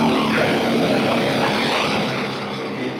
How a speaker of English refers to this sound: It looks like a giant metal harpoon that runs on compressed air and uses water to bore through thick rock.